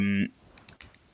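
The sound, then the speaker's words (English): A voice trails off, then a pen clicks three times in quick, uneven succession, small sharp taps, fairly quiet. “There's a weird clicking, by the way. Oh, sorry, that's my pen.”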